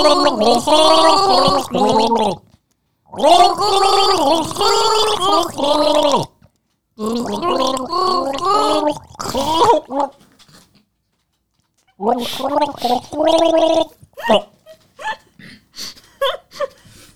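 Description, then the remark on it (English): A person gargles water while trying to sing the chorus of a song, producing bubbly, warbling vocal bursts in several loud phrases separated by short pauses, ending in sputtering fragments. “I got too much water on that one.”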